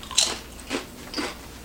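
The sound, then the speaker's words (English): Crisp crunches of someone biting into a thick Zapps New Orleans kettle-style Voodoo potato chip in a taste test, three sharp bursts spaced roughly half a second apart with no talking. “Very crunchy, very substantial.”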